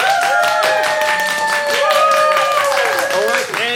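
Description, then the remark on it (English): A crowd claps to vote that the world should be more like a cartoon, steadily and loudly for a few seconds, a dense, continuous patter of many hands, with voices cheering and calling out over the applause. “If you think the world should be more like a cartoon, please clap now.”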